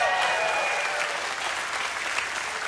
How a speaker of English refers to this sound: And that's why I wrote a book that recently released. This is your cue to cheer. It's called Dangerous Prayers.